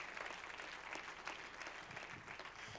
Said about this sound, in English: You deserve a hand clap today. Come on now.